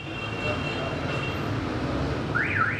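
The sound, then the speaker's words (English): Dense street traffic roars steadily as drivers honk their horns trying to get through a street packed with cars; one horn blares for over a second, then a warbling alarm-like tone rises and falls near the end of the busy, noisy scene. “Drivers honk their horns in a futile effort to get through a street packed with cars.”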